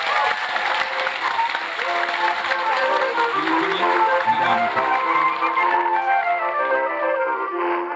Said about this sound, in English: So round of applause, please, for our guests, for yourself